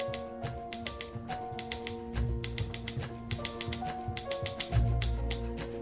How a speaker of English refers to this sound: Hey, she's walking, but we're still hearing the typewriter. Hmm.